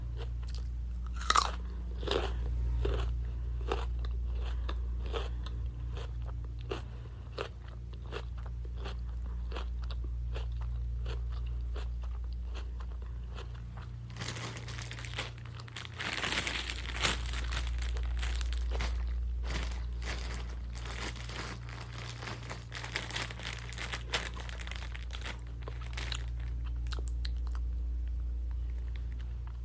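Crisp crunching of someone biting and chewing raw baby carrots as a snack, with repeated sharp snaps and a steady munching rhythm over a low hum, no talking.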